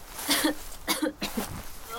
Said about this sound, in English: Chew these. Good for coughing. Well, are they helping? Don't swallow. You made it worse. Why are you giving her leaves that make her cough?